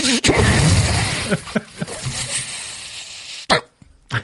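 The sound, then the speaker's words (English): Loud hissing bursts of sanitizer being sprayed onto a microphone, a long spray followed by a few short puffs, with sharp pops and handling noise between them. “Hey, I got mic spray, actually.”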